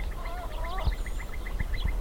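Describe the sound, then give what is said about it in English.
A busy dusk chorus of warblers, willets and other birds at the Navapatia Field Station, a research station in a small fishing town on an estuary near the Sonora–Sinaloa border, on a calm, still evening: a steady run of short, repeated chirps over rising whistled calls, with a low background rumble and no voices. “It's dusk at the Navapatia Field Station, and a cacophony of warblers, willets, and other birds fills the otherwise calm, still evening.”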